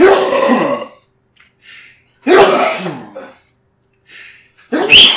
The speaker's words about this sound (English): Like, I can stop a sneeze. Like, I think it's COVID, bro.